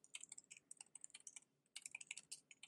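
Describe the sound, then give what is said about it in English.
Rapid keyboard typing, a dense run of light clicking keystrokes, pausing briefly midway before resuming at the same quick, uneven pace. No voices. “He's typing. He can't think and type at the same time.”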